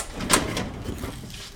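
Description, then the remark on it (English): A metal filing drawer full of Searsport photos rolls open with a low, steady grinding rumble, a sharp click near the start and another knock as it stops. Moderately loud, with no talking. “This whole drawer are Searsport photos.”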